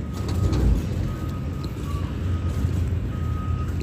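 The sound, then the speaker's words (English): Repeated reversing beeps from a vehicle, steady evenly spaced tones, fairly faint, sounding over a heavy low engine rumble and traffic noise. “You hear that beeping?”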